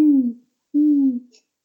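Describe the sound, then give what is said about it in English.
Two low, drawn-out hoots from a hoot owl, each sliding slightly downward in pitch, separated by a short pause. They are fairly loud, with no talking over them. “It's a hoot owl.”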